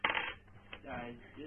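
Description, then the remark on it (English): A short burst of clattering as several small dice are thrown in a tabletop role-playing game, tumbling and rattling across a hard tabletop, followed by a single click and then a voice speaking quietly in the background. “Okay, so you're rolling your 3 dice plus 1 for.”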